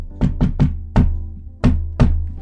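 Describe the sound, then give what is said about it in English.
Knocking on a bar's door in a distinct coded rhythm: three quick raps, a single knock, a pause, then two more. The knocks are solid, with a faint low hum underneath and no voices. “And I'll knock like this.”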